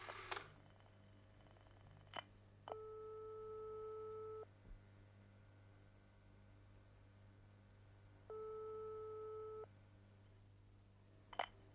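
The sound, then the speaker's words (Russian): Two long steady electronic telephone ringing tones sound on the line late at night, each lasting nearly two seconds with a pause between, over a low hum and faint clicks. “Ну, кто это звонит мне среди ночи, черт возьми?”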